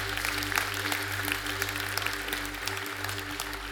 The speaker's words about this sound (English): He is alive. There's power in that. You can clap for that. Give it a hand.